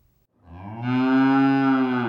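A single long moo from a dairy cow on the Stone Ridge Dairy Farm in Arundel, Maine, on a cold winter day, low and loud, rising from a faint start into a sustained, harmonically rich bellow that holds steady for nearly two seconds before cutting off.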